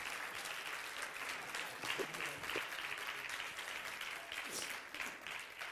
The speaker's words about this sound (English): I think all the ladies are to give all these guys a big hand clap.